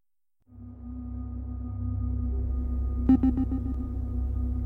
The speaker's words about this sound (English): There's a humming sound and an airy sound, like air conditioning doing its job. Everything feels mechanical, artificial.